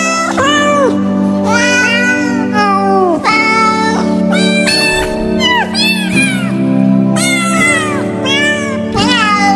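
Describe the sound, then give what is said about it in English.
Loud, insistent cat meows and yowls pile up one after another, wailing and sliding in pitch over a steady low drone, almost like a chorus of cats. “You would think that when you squeezed them, it would make them hit the high notes better, but it's actually just the opposite for cats. The low notes, you have to squeeze them.”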